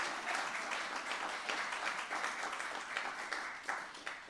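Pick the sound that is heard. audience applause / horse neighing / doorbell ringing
audience applause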